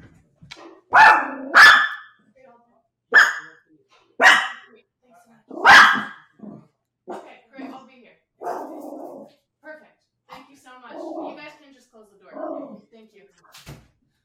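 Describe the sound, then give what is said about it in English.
A Chihuahua pit bull mix dog barks loudly, five sharp, irregular barks over several seconds, as a worker knocks at the door, followed by softer, muffled talking. “My dog actually took that opportunity to start freaking out also.”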